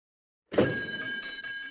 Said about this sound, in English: The bell jingles as you walk in, and your eyes are drawn to the display case full of chocolates, pralines, and especially Mozartkugeln.